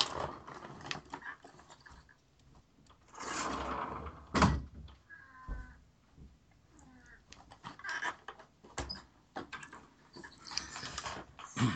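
A door being opened to let a cat in: rustling and shuffling, a sharp latch clack, a dull thump, and a brief squeaky creak, followed by more soft handling noises. No one speaks.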